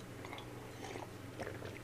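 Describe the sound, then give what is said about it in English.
Someone takes a quick drink: soft, wet mouth sounds and a couple of small swallowing clicks over a low steady hum, with no talking. “Had to wet my whistle.”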